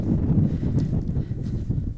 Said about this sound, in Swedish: Det blåser rätt hårt här.